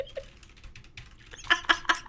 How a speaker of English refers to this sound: Tell the difference between the fake typing and the real typing.